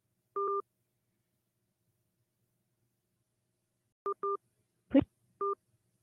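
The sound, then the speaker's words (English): Telephone keypad tones entering a 5-digit zip code into an automated Planned Parenthood phone line: one beep, a long pause, then three more short two-note beeps in quick succession, with a sharp click between them. No one speaks. “Please enter a number, 1 digit at a time.”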